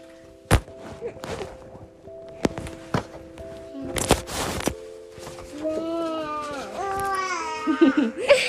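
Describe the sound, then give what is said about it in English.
A few sharp thuds and knocks, then a baby starts crying in the second half: wavering, high-pitched wails that grow louder toward the end. “There's another baby crying for real.”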